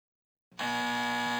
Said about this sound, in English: That is incorrect. You got the buzzer.